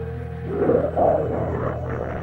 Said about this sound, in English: Ah, there it is again. Avis, did you hear that? It sounded like a growl coming from within. Whatever it is, our scanners can't identify it.